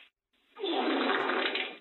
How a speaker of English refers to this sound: Was that a toilet flush? I don't think it was what a flush. Was it?